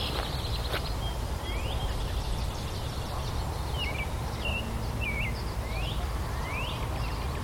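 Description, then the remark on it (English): A bird, likely a red-winged blackbird, sings a series of short, bright whistled notes at irregular intervals in a conservation area, over a steady rushing outdoor background like wind or rustling. “Listen to this bird, he's really pretty.”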